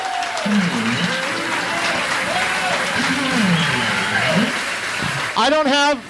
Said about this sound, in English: So please, everybody, give yourselves a round of applause for coming to Grilla Mall in Alhambra, California.